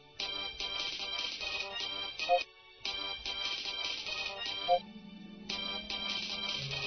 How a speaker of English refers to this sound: I have avoided answering the constantly ringing comlink. I know it's her